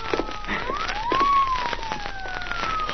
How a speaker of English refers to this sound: Yeah, listen. Police car. Yeah, that woman must have called the police, too.